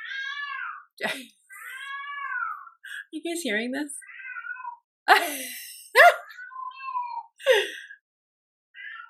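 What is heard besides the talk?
cat meowing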